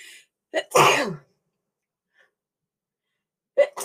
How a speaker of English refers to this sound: I gotta sneeze.